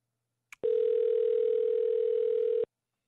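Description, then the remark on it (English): A brief click, then one steady, unbroken electronic ringback tone on an outgoing call to the speaker's own phone, holding for about two seconds before cutting off cleanly. Clear, no voices. “Phones are ringing. No one's answering.”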